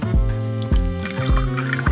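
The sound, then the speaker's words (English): Bourbon glugs from a bottle into a glass, four rhythmic gurgles with a ringing, rising tone as the glass fills, no voices present. “It's that brown water, man. It's the juice. The elixir of life.”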